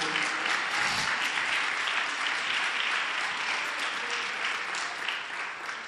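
An audience claps and applauds steadily as a church service is brought to a close, a dense wash of many hands sustained for several seconds at a fairly loud, even level, with no one speaking over it.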